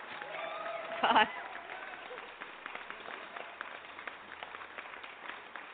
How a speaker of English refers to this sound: We're going to clap you out.